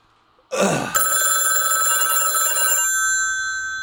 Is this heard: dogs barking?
no